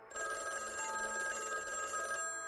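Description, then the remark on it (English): A telephone rings with a steady, bright metallic bell tone that sustains for a couple of seconds, fairly loud, with no voices. “I picked up the phone and said hello.”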